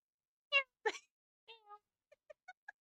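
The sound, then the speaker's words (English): A male cat being disciplined for scratching meows, first a bright meow, then a rougher, breathy cry and a longer drawn-out mew, ending with four quick, short chirping meows in a row. “I'm trying to discipline my cat.”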